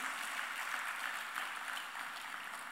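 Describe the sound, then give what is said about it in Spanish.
A church audience applauds the Lord during a sermon, a dense, steady wash of many hands clapping that holds evenly throughout at a moderate level, with no voices rising above it. “Denle un aplauso al Señor si usted está agradecido con su llamado.”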